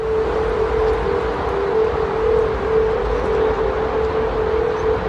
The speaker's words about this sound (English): This is a weird sound coming from the Golden Gate Bridge. San Francisco recently overhauled the bridge to make it more aerodynamic. And this is what it sounds like. It's weird.